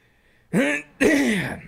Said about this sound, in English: Good. Cough in the mic.